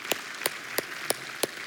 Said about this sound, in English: Like, can we just give all of our workers, all of our leaders a round of applause? Thank you, guys.